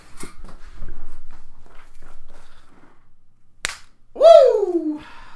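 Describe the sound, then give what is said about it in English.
A single sharp, crisp slap cracks out after a stretch of faint shuffling, followed right away by a loud, falling vocal cry. “I'll come over there for the slap.”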